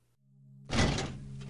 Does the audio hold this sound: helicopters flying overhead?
no